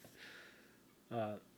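A soft breathy exhale is followed by a short, voiced cough-like burst, a single light throat sound that stops almost at once with no talk around it.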